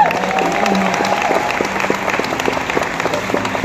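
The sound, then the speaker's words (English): A church audience applauds steadily, dense overlapping claps forming a continuous wash of noise at an even loudness throughout, with a few faint voices and cheers mixed in. “Give these guys a hand.”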